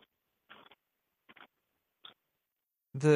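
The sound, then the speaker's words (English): A voice imitates the crunching of a Chuck E. Cheese ticket machine as tickets are put into it, with three short, raspy, noisy bursts spaced apart by quiet gaps, followed by a brief louder voiced sound at the end. “Anytime you put those tickets inside those Chuck E. Cheese machines and it makes those crunchy noises like...”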